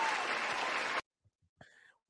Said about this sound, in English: Donovan Peoples-Jones, I'm going to take a round of applause for this one.